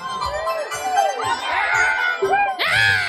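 People screaming on a pirate ship ride: overlapping rising and falling shrieks from a crowd of riders, with one louder, sharper scream near the end over a low rumbling background.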